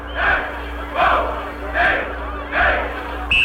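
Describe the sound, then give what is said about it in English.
A University of Minnesota crowd in a 1962 Rose Queen parade procession gives a hearty cheer of school spirit: many voices shout together in four loud, evenly spaced bursts, like a rhythmic chant, over a steady low hum. “The University of Minnesota demonstrates its loyalty and school spirit with a hearty cheer in raised letters.”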